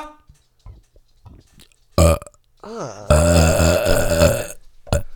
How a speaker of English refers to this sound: Dude, that like inner stomach you heard. Inner gutted. Which is wow. Those are the best burps.